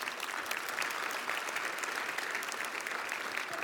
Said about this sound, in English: Adventure Church, yeah, you can give God a round of applause for that.